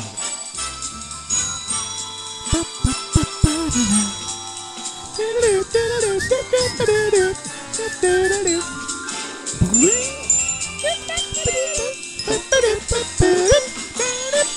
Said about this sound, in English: You don't hear the xylophone in a lot of songs. There's a lot of little chimes or something. Bells and chimes going on in there. Lots of ancillary percussion instruments right there.